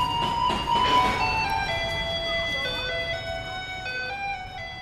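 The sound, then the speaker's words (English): A tinny electronic melody of Für Elise plays from a garbage truck in Taiwan as it rumbles down the street, over a low engine rumble and street noise, the tune steady and moderately loud. “But if you live in Taiwan and you hear a truck rumbling down the street playing Für Elise, it doesn't mean it's time to buy a popsicle.”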